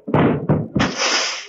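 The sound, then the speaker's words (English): Someone walks into a door that was ajar, hurting their nose: two heavy thuds in quick succession, then a third impact that trails into a loud, sustained rattling clatter. “Now what happened? The door was ajar.”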